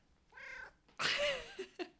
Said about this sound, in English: this is my cat. She's a difficult personality. I find her charming.